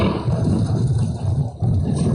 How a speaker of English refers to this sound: Oh, here we are, red dragon roars. Let's get chased by a dragon!